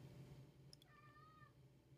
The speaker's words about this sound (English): Sorry, my cat's going crazy. He wants in. But he keeps going in and out, and I keep having to cut, so he's going to have to chill. And you guys might have to be forced to listen to a very, very pissed off cat.